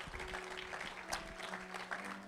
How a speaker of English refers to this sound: Let's give the word of God a hand clap of praise, everyone. God is so good.